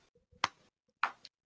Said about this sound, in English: And then, after he is done, when he has burned through about half a box of chalk, there is a clapping from behind him. A golf clap.